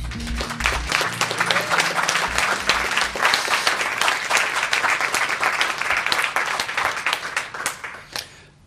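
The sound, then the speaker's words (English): A crowd applauds steadily, dense overlapping claps filling the whole stretch at a loud, even level before tapering off at the end. A low tonal hum sits beneath the clapping early on. “Now you can applaud.”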